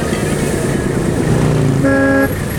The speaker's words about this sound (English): Here's my bus.